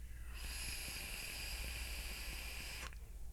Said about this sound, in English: It's a twisted Timmy coil, so I'm actually getting like a little bit of crackle from it.